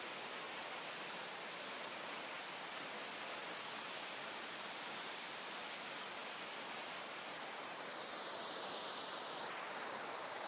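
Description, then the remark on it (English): A 30-foot waterfall at the rear of the Canada pavilion at Epcot pours steadily over a massive rock formation, a continuous broad rushing hiss that holds even for the whole stretch, fairly soft and with no voices or other sounds over it. “Now, at the very rear of the pavilion, toward the right, is a massive rock formation at the base of the Rockies, with a beautiful 30-foot waterfall cascading over the surface.”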